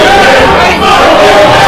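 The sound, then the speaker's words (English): A large crowd boos loudly in disapproval as Zach Thomas comes out, a dense, sustained roar of many voices that holds steady throughout with only a brief dip midway. “And this crowd is letting them hear it. They are not approving it.”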